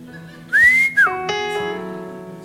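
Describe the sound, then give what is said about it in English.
A loud wolf whistle: a rising whistled note that holds, then a quick downward swoop, leaving a sustained steady hum of tones underneath with no talking. “he didn't only roll over and whistle at her when he saw her for the first time.”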